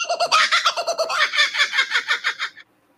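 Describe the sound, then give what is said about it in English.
A loud cuckoo bird call: a rapid, chattering burst of about a dozen quick repeated notes over two and a half seconds, then abrupt silence. No talking. “Cuckoo bird.”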